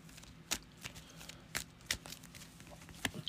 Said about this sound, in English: I'm going to get an encounter card because I'm going to have to shuffle now.